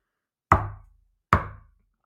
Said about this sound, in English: group of kids be running around late at night, knocking on windows to get a few laughs? It's a possibility. Come to think of it, maybe it was my imagination. Maybe I heard the usual creak in my house, and my paranoid mind has mistaken it for a knock.